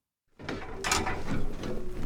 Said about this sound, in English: A fire captain unlocks and lowers the rear door of a red fire engine about an hour east of Sacramento.